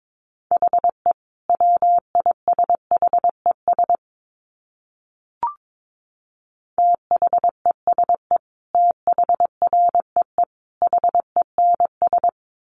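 Morse code practice tones at 22 words per minute: a steady, mid-high beep keyed rapidly into dots and dashes, in two long runs separated by a pause broken only by a single soft click.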